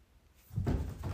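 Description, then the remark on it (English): A bathroom door swings open after a brief quiet moment, opened by an employee with a mop, with a low rumbling, scraping sound that swells and continues, moderately loud, with no voices. “Suddenly the door opened.”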